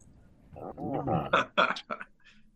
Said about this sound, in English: I heard a dog barking.